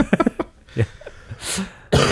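A few short, breathy coughs from a person with a cough that has lasted about two weeks, separated by brief throaty murmurs, ending in a sharper, louder burst.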